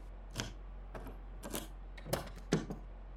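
A door lock with a painted handle disguised as part of the wall being picked with wire taken from a walkie-talkie: about five small metallic clicks and scrapes at irregular intervals, fairly quiet, over a steady low hum, with no voices.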